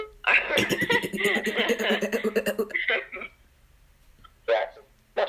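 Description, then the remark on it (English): A long, rough, faked throat-clearing rattles loudly for a couple of seconds, followed after a brief pause by a few sharp, separate real coughs. “the master of pretending to clear his throat and then actually having to”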